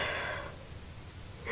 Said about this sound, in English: Breathe. Deep. Inhale. Deep. Exhale. Wait, no, that's not normal. Nobody breathes like that.